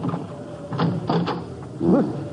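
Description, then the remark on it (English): At night, the door handle of Tassinari's curio shop, an old junk shop, is rattled, with a few sharp latch clicks, then a short wavering creak as the unlocked door swings open. No one speaks. “Let's try the door.”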